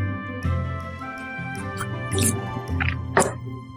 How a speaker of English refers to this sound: That was a weird sip.